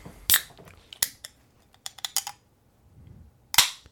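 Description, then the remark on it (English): A beer container is opened slowly, giving a drawn-out series of sharp clicks and metallic cracks spread over a few seconds, with quiet pauses between them and a final louder snap. No one talks. “I just know if I do it too hard, it sprays beer all over the microphone.”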